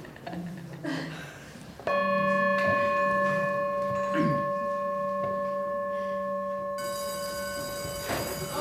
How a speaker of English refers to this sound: So raise your hand when the sound of the bell is gone.